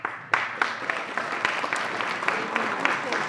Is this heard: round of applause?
yes